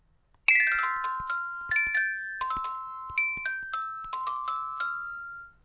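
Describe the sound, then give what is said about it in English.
A bright, ringtone-like chime jingle plays alone, a quick melodic run of bell tones in several bursts, each note ringing out and decaying over a few seconds. “Little known fact, that's actually the ringtone of Hilary Swank's phone, but they never use it in the movie.”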